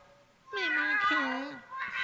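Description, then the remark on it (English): A human voice mimics a cat, drawing out a long, wavering meow with sliding pitch, followed by a shorter second meow. Fairly loud, with no other sounds around it. “I like that it's humans meowing as cats, not cats.”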